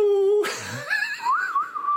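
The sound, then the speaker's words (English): Someone whistles a film-score melody: a steady held note, a breathy rushing burst, then a higher wavering tune that slides up and down, fairly loud and with no talking. “That was satisfying, doing that whistle.”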